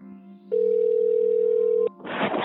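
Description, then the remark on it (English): A telephone ringing tone during a call to a musician of a band: one steady, mid-pitched electronic beep holding for over a second over a low hum, then cutting off into a short rush of line noise as the call connects. “Lance called up … from … to catch up.”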